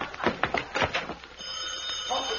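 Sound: telephone ringing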